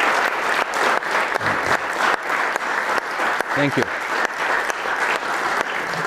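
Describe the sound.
Steady, loud applause from an audience welcoming a guest speaker to an event hosted by Bob Blackman fills the whole stretch, a dense wash of clapping with a brief spoken phrase rising over it partway through.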